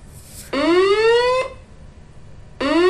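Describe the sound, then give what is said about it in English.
A building fire alarm blares loud, rising whoop tones: one long upward sweep, a short pause, then another starting. No voices. “The comedy alarm's gone off.”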